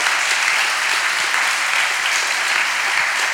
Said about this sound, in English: if you believe it, give God a round of applause.